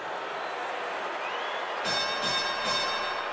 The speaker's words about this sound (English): You heard a 30-point bell there.